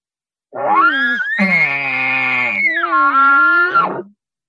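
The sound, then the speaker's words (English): A human voice, with a call in the mouth shaped by tongue pressure, imitates a bull elk's whistling whip ball bugle, the call of a bull that is super mad or telling its cows to get back to the herd: a strained, grunting rise into a long, high squealing tone with rich harmonics, dipping and climbing again before breaking off, about three and a half seconds long. “When it's super mad, or just when it's telling its cows to just get back to the herd.”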